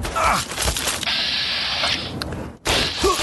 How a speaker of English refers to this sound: That small arms fire, however, is some raiders. They're trying to have me for breakfast.